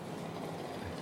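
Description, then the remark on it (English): A chainsaw starts up at a property next door but one, its engine running with a steady, rough mechanical drone, a low buzzing rumble that holds at an even level for about a second with no voices. “As the chainsaw starts up.”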